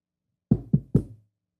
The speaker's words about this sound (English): Why don't you knock on it first? Let's see if anybody answers.